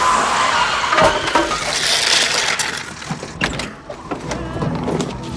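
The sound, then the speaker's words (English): In a film scene, a large truck driven by Dwight Yoakam's character grinds to a halt after someone dangles a hand to get the driver to stop, with a steady roar of engine and road noise, scattered clanks and a faint squeal of brakes as it slows, no voices. “Like, we see his little hand dangling down, trying to get the truck driver to stop. Finally does, and it's Dwight Yoakam, and he's great.”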